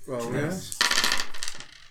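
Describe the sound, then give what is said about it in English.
A short vocal sound gives way to a handful of ten dice being rolled, clattering and rattling together in a rapid burst of hard, bright clicks that lasts about a second before settling. “Oh, massive one success with my 10 dice.”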